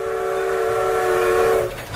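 train sound effect

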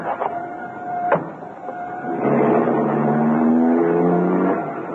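car driving away

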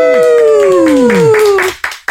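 applause

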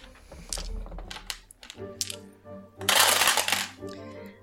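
dice rolling

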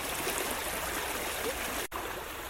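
rushing water

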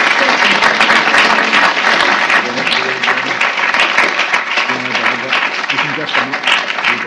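audience round of applause

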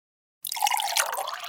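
water being poured

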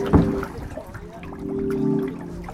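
water trickling

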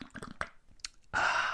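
sipping coffee

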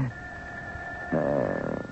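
telephone ringing

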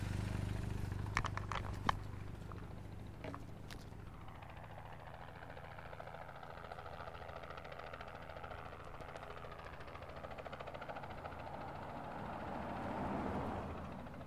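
helicopter approaching

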